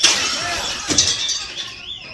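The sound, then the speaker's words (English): Glasses and a bottle smashed by a naked woman at an Outback Steakhouse restaurant in Ocala, Florida: a bright, jangling crash of breaking glass with scattered tinkling shards and a sharper impact midway, fairly loud. “Just going to get rid of that silverware thing and get rid of all these fucking glasses.”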